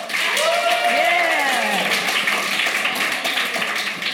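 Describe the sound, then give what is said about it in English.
A live audience claps steadily and densely for about four seconds to show they like avocado, with a few whooping voices rising and falling over the applause early on. “By clapping, do you like avocado?”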